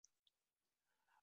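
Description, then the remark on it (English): Dice rattle and clatter as they're rolled by hand during a board game: two sharp, bright clicks up front, then a softer tumbling rattle. It's quiet, with no voices. “oh dear, so you roll dice and you're trying to save people's lives.”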